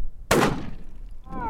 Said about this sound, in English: I mean, it's a shotgun. We're going to see what this is all about. I expect the kick and stuff.